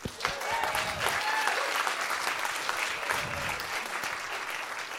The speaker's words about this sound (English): This has been fantastic. I want to give another round of applause to all of the storytellers.